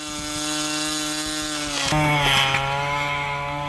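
An Equisearch search drone flies over an open area with a steady, high buzzing whine of spinning rotors that dips and shifts in pitch about halfway through, then settles into a continuous drone. No one speaks.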